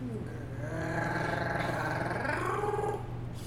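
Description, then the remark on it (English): A voice imitates a high-pitched Wookiee screech, a sustained, warbling growl-cry lasting about three seconds that wavers up and down in pitch over a steady low hum. “I can make a high pitched Wookiee sound.”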